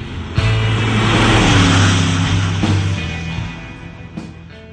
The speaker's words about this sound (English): Sir Sterling slips the clutch and roars off.